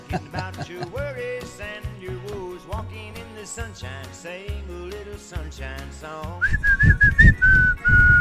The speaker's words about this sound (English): Was that a better whistle this time? A little bit, yes.